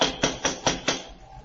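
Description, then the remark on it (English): Five firm, evenly spaced knocks on a door in quick succession, a second try at knocking after no answer, each a sharp solid thud, followed by a brief quiet tail with no voices. “Try knocking again.”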